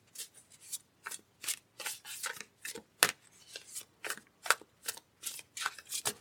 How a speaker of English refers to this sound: So you're going to hear me move these cards a little bit, give them a little bit of a shuffle.